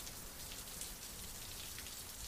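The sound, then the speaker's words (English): Steady, dense storm rain pours down on the town of Helston in a continuous hiss, with a soft patter of drops striking a surface throughout and no voices. “I watch as the children run inside to take shelter from the storm.”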